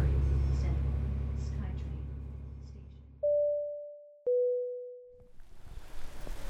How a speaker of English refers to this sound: Okay, well that didn't work because some guy got on the bus. So that's good though. He saved me from myself and my really bad plan of recording a podcast on the bus. So rainy day, I rode the bus around all day, whatever.